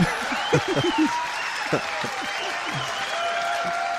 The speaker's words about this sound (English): Everybody's whistling.